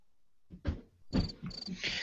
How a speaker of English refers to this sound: Sorry, I had to play the crickets. It was eight minutes in.